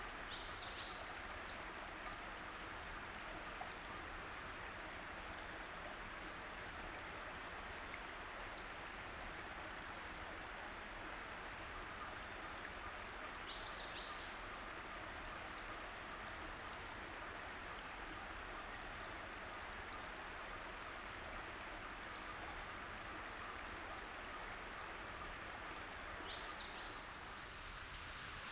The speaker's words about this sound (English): The bright trill of a jonco and the high-pitched song of a Louisiana water thrush. That's my first warbler of the year.